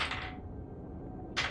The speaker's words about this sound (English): I have rolled dice in an attempt to streamline.